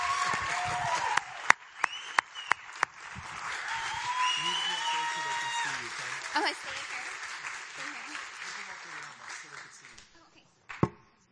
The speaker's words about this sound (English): We're going to applaud both of them right now. Just yay God.